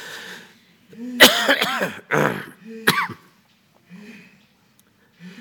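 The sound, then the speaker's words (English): A preacher during a sermon gives a few loud coughs in quick succession, harsh and bursty, followed by some quieter throat noises and breathing with no talking. “I'm going to cough.”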